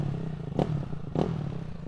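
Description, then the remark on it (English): A motorcycle engine idles with a steady low rumble, broken by two short sharp bursts of clatter about half a second apart. No one speaks. “It's just a regular motorcycle, I guess.”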